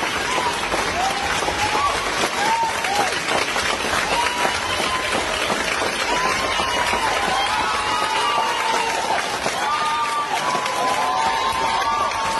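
standing audience applauding

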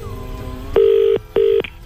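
telephone dialing and ringing

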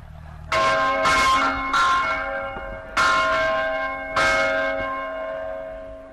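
church bell ringing

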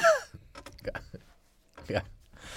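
throat clearing and coughing

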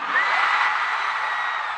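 concert crowd cheering wildly

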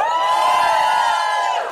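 audience cheering

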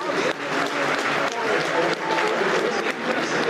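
stadium crowd applause

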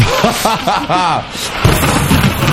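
thunder sound effect

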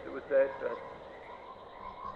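frog croaking

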